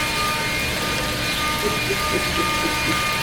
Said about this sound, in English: Is there a dentist nearby drilling? What the hell is going on here? Oh, that's a guy. No, what he's doing is he's blowing leaves off of the fucking thing.